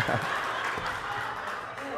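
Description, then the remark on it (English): A church audience claps together during a sermon, in a dense, steady patter of many hands, with voices murmuring underneath. “I wasn't trying to get you to clap.”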